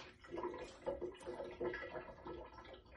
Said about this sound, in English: Okay, I've dumped it into the cold water. I'm actually gonna put my hand in and feel it.